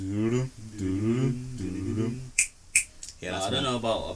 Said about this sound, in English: So are they gonna click? Did they click their fingers? Or they are clicking their fingers?